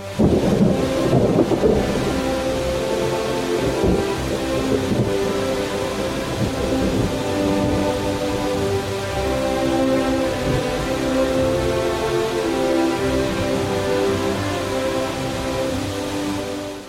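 A thunderstorm with steady, heavy rain and a deep rumble of thunder near the start, while sustained classical music by Brahms plays continuously underneath the downpour.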